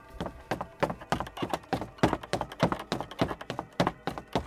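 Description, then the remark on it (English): Quick, heavy running footfalls thud in a fast, uneven rhythm inside a house, like someone running across wooden floorboards or stairs, around fifteen hollow knocks in a few seconds with no voices. “Brushing the moment off, she finishes with the gown and heads up the stairs when she hears the running footsteps.”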